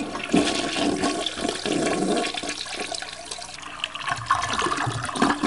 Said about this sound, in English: But he's not there, and we just hear a toilet being flushed.